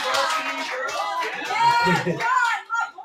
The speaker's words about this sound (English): All right. Can we clap it up